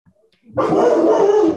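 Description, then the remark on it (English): After a brief hush, a dog suddenly lets out a loud, drawn-out angry bark as someone rings the doorbell and it goes to the door, holding the harsh, agitated sound for about a second with no one talking. “Somebody just rang the doorbell. Hey! Fuck, he goes to the door. He goes to the door like all angry, eh?”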